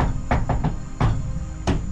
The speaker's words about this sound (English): So, yeah, you give it a good knock, and from inside the cabin, you hear a voice.